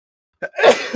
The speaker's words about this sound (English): Bless you, sir.